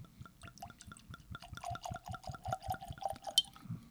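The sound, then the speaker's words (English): Liquid glugs out of a freshly opened bottle in a quick, steady run of gurgling pulses, clear, the pitch rising slightly as the pour goes on, with no voices. “You only get that sound on a fresh bottle.”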